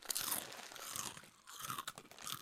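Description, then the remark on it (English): Loud, dry crunching as a Deep River Snacks pretzel is bitten and chewed, a quick series of crackly bursts with bright high-end snaps over about two seconds, no talking. “Yeah, I'm going to eat one quick pretz.”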